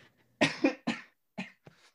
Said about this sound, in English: Hey. Look at that, already off to a cough start.